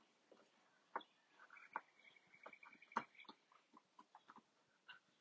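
A puppy gnaws on a bone, with irregular crunching clicks and scraping bites spread unevenly across the moment, fairly quiet overall, while a faint high chirp runs faintly in the background.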